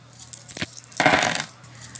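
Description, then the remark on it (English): Coins clatter onto a hard surface, a short jingle followed by a longer, brighter rattle as they settle, with no voices: 45 cents of lunch money being paid in a school lunchroom. “I held those coins in my hand so long that I had an imprint left in my palm.”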